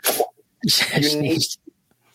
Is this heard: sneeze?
yes